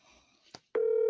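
A couple of quick clicks on a phone line, then a loud, steady telephone tone begins and holds as an outgoing call, placed live on air, starts to ring.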